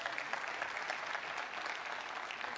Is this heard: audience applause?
yes